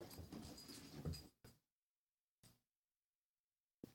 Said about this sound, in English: Dog just spazzed out.